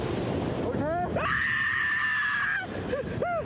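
human body sound, man screaming

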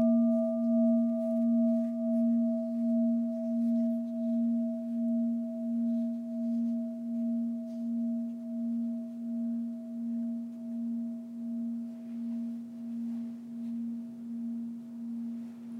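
signal or alarm, bell ringing

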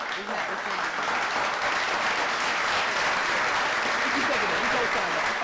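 sound effect, clapping sound effect

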